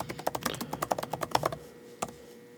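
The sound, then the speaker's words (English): Rapid, uneven clicking of keys on a computer keyboard for about a second and a half, then a pause and one last isolated keystroke. Fairly quiet, with no voices. “Listen to the keyboard ASMR.”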